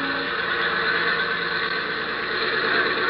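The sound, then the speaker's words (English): A small propeller plane, its fuel mixture deliberately thinned so it sounds in trouble, circles a small airport about a mile from a hotel; the engine drones loudly and continuously, a harsh, buzzing roar with a slightly uneven, labored edge and no voices over it. “she'd be circling that little airport about a mile from the hotel and sounding as though she was in trouble”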